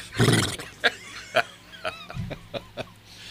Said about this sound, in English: We have guys riding through the streets of Logan Sport delivering right. mail. There you go. You can hear the hooves going down the...